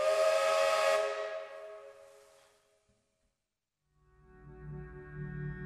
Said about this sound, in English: The sound of freight trains begins to sound suspiciously like broadcasts on the pirate station.